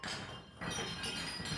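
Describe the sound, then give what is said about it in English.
A bright metallic chime rings out with sustained, shimmering high tones, then is struck again about halfway through so the ringing swells and carries on to the end. No one speaks. “Do you want to give a final chime, Doug, for your last comment of the day?”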